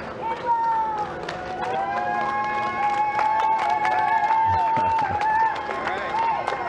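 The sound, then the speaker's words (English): A small crowd cheers NASA astronauts Bob Behnken and Doug Hurley as they come out through the doors, with steady sustained high-pitched whoops and shouts layered over scattered claps, staying fairly loud for the whole stretch. “Small crowd, but big cheers.”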